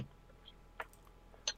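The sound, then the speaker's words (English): A few soft, irregular clicks of keyboard typing, faint, with two sharper key taps standing out against a quiet background and no talking. “I excuse my The typing.”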